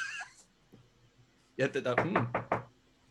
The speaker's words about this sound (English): So your three companions are at your door and hopefully knocking to end my talking.